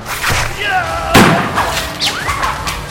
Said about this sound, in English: A gunshot and a scream rang out as my blade sliced into pay dirt.